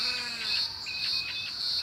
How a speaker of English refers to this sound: Aha! I know what's making this sound now. It's coming from cicadas, and this is a cicada shell.